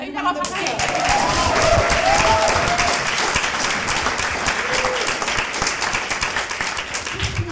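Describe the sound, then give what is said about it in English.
A crowd applauds steadily, dense rapid clapping sustained throughout at a loud, even level, with some faint voices murmuring underneath. “Can we like clap?”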